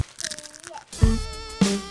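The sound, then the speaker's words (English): Crunching of plantain chips: two loud, sharp crunchy bites about half a second apart, after a quieter stretch of faint rustling and chewing noise. “Oh, I did not get a good crunch on that. Try again. Get multiple. And the final crunch.”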